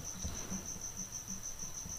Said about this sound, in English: But I feel like I'm on the Blue Bayou restaurant at Disneyland, you know, Pirates of the Caribbean style, because that's all you hear is fake crickets.